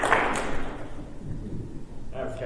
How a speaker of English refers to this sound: Are you still with me? Clap once if you are.